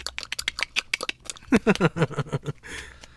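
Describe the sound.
A person makes rapid, sharp mouth clicks, imitating a bat's echolocation, then shifts into a short run of voiced, throaty pulses before trailing off into a soft breathy hiss.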